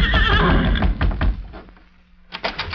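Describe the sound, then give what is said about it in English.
Silver, the Lone Ranger's horse, standing by the door to the judge's office, gives a loud, wavering whinny that trembles and fades within a second, followed by a few dull thumps, a low steady hum, and then some sharper clatters. “Couldn't be two horses that sound the same.”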